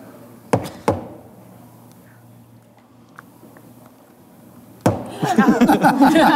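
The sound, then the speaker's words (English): Two sharp knocks in quick succession, imitating a knock on a door, then a quiet pause, another thump, and people start talking and laughing loudly. “I get back to the door.”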